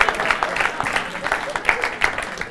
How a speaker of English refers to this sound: That was the object. You can give a round of applause.